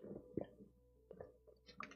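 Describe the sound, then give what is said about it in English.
Soft sips of water, a few brief wet slurps and swallowing noises spaced across a quiet moment, with no one talking. “Let me take a sip of this water here.”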